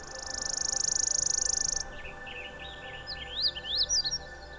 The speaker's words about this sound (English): Birds singing.